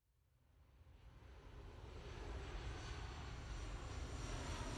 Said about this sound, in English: As his plane touches down at Pisa Airport, Arthur Brand shifts uncomfortably in his seat.